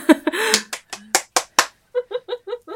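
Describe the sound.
About five sharp, loud hand claps at an uneven pace follow a brief vocal sound, then give way to a quick run of rhythmic, voiced bursts like laughter.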